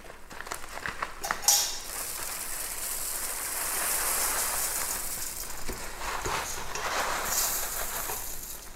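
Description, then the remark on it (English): About 160 grams of dry puffed rice cereal is poured into a pot, a steady crisp rattling and pattering that swells and fades over several seconds, with a few sharper clinks near the start. No one speaks. “I'm using about 160 grams. I'm just gonna pour it in.”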